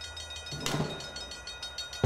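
A train rolls past on the rails, a steady rumbling roar with faint rhythmic surges and a sharper clunk near the end. No one speaks.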